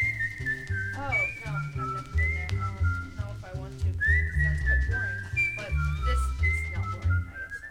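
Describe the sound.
A man whistles a lively, wavering melody with bends and trills over a steady musical backing that keeps a bouncing bass rhythm throughout, in Soundsville.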